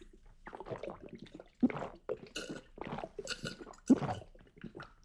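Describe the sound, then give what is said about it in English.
Sipping and gulping of water, a series of wet swallows and mouth sounds repeating unevenly every half second or so, with no talking. “What if we just like end the podcast by just drinking water?”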